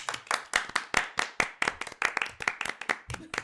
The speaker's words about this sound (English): Looking around and nodding at everyone while I get clapped. I clapped myself as well.